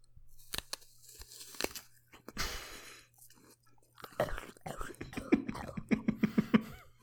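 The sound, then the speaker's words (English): A voice imitates someone crunching into an apple: sharp wet clicks, a hissing bite, then a run of gurgling, rhythmic chewing and smacking sounds, fairly loud. “Here's an impression of Gollum eating an apple.”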